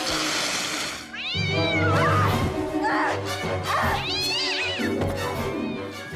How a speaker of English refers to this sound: What the hell's wrong with it? It's a cat. That's what's wrong with it. Oh, hey, kitty, kitty. Hi, little fella.